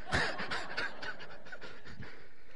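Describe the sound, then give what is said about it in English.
A voice imitates the heavy, rapid panting of someone who has stopped working out, a steady run of breathy huffs repeating about every quarter second, fairly loud with no other sounds. “You are breathing so hard. You're breathing so hard. I'm going to die. I'm breathing hard.”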